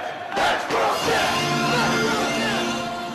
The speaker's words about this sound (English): Jay and Mark Briscoe looking to regain the Ring of Honor World Tag Team Championship in Chicago as part of the fifth year festival. Listen to the crowd.